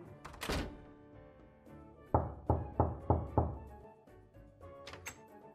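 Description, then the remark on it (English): A door is shut in a little girl's face with a solid thud, then after a pause four firm, evenly spaced knocks rap on it. No one speaks. “Mister, I know you just did not close the door in this little girl's face.”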